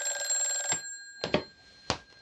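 An old-style telephone bell rings in a rapid metallic trill for under a second, then stops abruptly, followed by a few sharp clunks and clicks, like a receiver being lifted.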